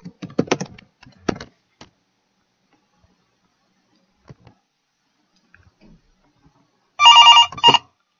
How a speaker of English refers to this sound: Alright. We can ring his parents' phone number. Okay, let's do it.